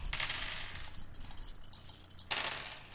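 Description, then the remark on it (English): Several players roll their collections of dice on a hard tabletop during a game, clattering and rattling in two bursts, a longer roll at the start and another after a short pause, fairly loud with no voices. “So the way the aftermath works is everyone rolls their collection of dice through the same dice math.”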